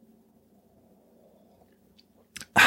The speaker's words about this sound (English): And there I am, right there in your other ear like, y'all ready for this astro tea or not? So let me take a sip.